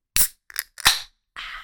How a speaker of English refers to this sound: Y'all ready to crack it? I'm ready. Cracking up a beer times three.